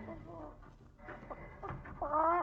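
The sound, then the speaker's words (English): A fat hen, carried in a woman's hand, clucks in short bursts, ending in a louder, drawn-out squawk with strong harmonic tones. “That's a chicken. She's a fat one. She's doing practically all the things a chicken can do.”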